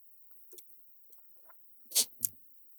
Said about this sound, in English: So I'm going to leave you with that for a second while I drink water.